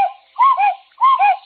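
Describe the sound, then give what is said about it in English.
A cuckoo clock strikes three, calling its two-note "cuck-oo" in quick succession, with two full calls following a clipped one at the start, clear with no voices. “The cuckoo clock struck three.”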